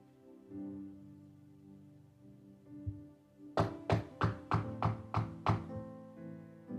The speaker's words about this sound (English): Knock on my door. Immediately.